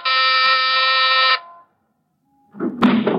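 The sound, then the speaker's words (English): A doorbell buzzes once, a harsh, steady electric drone lasting about a second and a half, then cuts off. After a short silence comes a brief, noisy clatter. No one speaks. “Ring the bell.”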